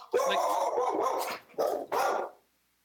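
The speaker's own dog barks loudly: a long, drawn-out growling bark followed by two short, sharp barks in quick succession, then silence.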